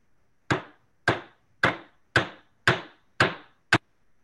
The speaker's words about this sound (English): And that's a hammer.